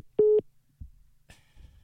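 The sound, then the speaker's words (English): A single steady electronic phone tone after a caller hangs up, a loud mid-pitched beep lasting about a fifth of a second, like a busy signal, followed by faint clicks and rustling. “He just hangs up always.”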